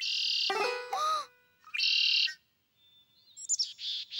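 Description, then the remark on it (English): A small black-and-white bird with a big head sings a series of bright, high, buzzy whistled phrases with short pauses between them, clear, with no voices. “On my right, a little black and white bird with a big head.”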